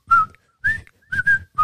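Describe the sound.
A person whistles a short, jaunty melody, the theme tune of the Andy Griffith Show, five clear notes in quick phrases with brief pauses between them, breathy and bright with no talking over it.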